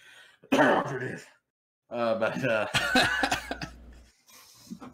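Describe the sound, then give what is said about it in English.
A throaty cough bursts out, followed by a rough clearing of the throat and another harsh hack, with brief vocal sounds mixed in between. “I'm sorry, I couldn't hear through the cough.”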